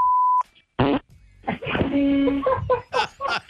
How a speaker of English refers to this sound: That's somebody else's phone, at least. This is your own phone you're farting into.